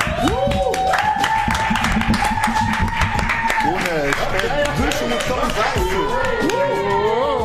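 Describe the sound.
An audience at the Maluco Beleza Show claps steadily and loudly for several seconds, a dense, continuous patter of hands, with voices calling and whooping over the applause.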